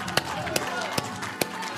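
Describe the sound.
A church audience gives the Lord a hand clap of praise and a shout: four sharp, evenly spaced claps ring out over a dense, continuous wash of raised voices.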